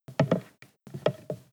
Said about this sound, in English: This whole time that we've been talking, Laszlo has been throwing around an ice cube on the floor that I had dumped earlier.